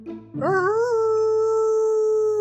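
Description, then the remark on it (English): A single mournful, distant howl from the roof of a house swoops upward after a brief scuffling start, then holds a long, steady, wavering note to the end, with no voices. “Like a distant mournful howl from like the roof of the house.”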